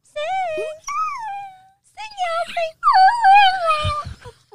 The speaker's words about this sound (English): one day I hear her mimicking me, and she's howling